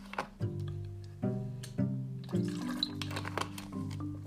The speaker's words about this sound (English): I just got to have some water.